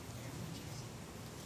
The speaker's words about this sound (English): The rain that's falling down right now is good.